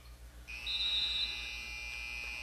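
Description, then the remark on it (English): The final buzzer of a basketball game won by Pilot Grove 52-29 blares as one long, steady electronic tone, held for about two seconds over a low background hum, with no one talking. “That will take us to a final as the buzzer sounds.”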